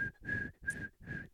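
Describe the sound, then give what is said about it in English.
A person whistles one unchanging note over and over, in three or four breathy bursts with short gaps, fairly loud, with no talking. “It kind of sounds pathetic, kind of like my other whistle”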